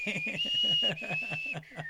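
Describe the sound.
Someone whistles a short tune up close, a few clear sustained notes stepping between pitches, with a rhythmic low pulsing patter underneath throughout.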